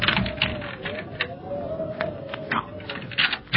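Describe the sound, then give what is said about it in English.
A key rattles and scrapes in a lock, with a run of metallic clicks and a faint creaking whine underneath, fairly loud and continuous over a few seconds. “This key fits.”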